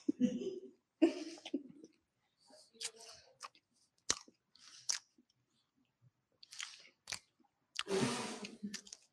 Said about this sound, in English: Damn, the cheesecake, it's not heavy. No. But the crunch is really setting this.